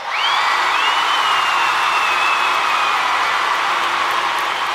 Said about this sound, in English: If you're here to boo, we welcome that. because we welcome freedom of speech. So we're going to give you 15 seconds to get whatever you have out. So here we go. On the count of three, you can start your booing. One, two, three!